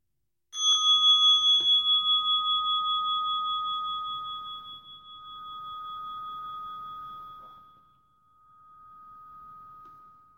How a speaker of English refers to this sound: So I'll begin by ringing the bell.